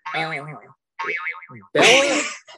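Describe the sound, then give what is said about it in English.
A phone message notification, signalling that some videos have arrived, plays a cartoonish boing sound: three quick springy tones with wobbling, warbling pitch, the last one loudest and brightest, with no talking. “It's my guy in Portugal letting me know that some videos have arrived.”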